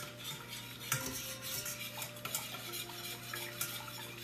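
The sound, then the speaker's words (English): A whisk scrapes and clinks steadily against the inside of a metal pot as a butter mixture is whisked over moderate-low heat, with a few sharper taps standing out over a low, constant hum and faint sizzling. No one speaks. “And make sure to whisk it all together so that it's nicely incorporated.”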